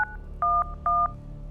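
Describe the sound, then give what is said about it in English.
Three telephone keypad tones beep in quick succession as a phone is dialed to call the police on 911, the first short and the next two longer and evenly spaced, clear against a low background hum with no one speaking. “Call the police, I told Stephen. He was already on his phone.”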